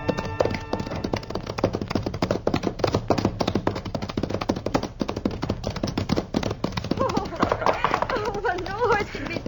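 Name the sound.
horse hooves clip-clopping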